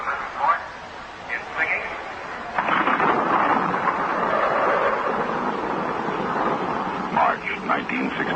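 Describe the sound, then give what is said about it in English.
A North Atlantic storm pounding New York City in March 1967: steady, loud rushing wind and rain swell in after a couple of seconds, with deep thunder rumbling beneath. Brief, faint voice-like fragments come and go at the edges. “March 1967, New York City under the pounding of a North Atlantic storm.”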